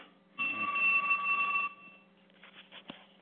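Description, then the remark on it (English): A landline telephone rings once in a loud, buzzy electronic burst lasting just over a second, then cuts off, leaving faint background noise and a brief soft clatter. “Hey, why have you not been answering your phone with a house phone? Because I'm using the house phone.”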